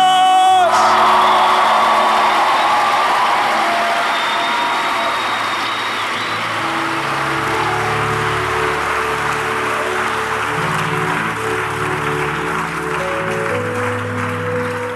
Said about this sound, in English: Give him a mighty, mighty, mighty, mighty. Come on, let's clap for Jesus.